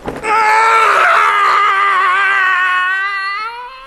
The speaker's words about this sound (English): The regular early morning yell of horror